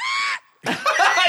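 A short, shrill, high-pitched scream rings out for about a third of a second, then a brief pause is followed by breathy laughter and snickering.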